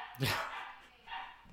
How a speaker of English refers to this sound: Like wolf pups, almost. Like loud, angry dogs in the next room.